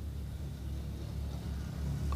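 A deep, steady rumble of a big car with a bad muffler, its rough, loud exhaust droning low and continuous as it comes by, with no voices.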